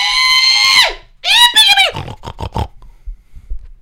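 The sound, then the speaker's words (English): A person lets out a loud, high, drawn-out pig call, a long squealing whoop followed by a second wavering cry, then a few short clipped yips trailing off. “It was a big, it was a really good call of pig.”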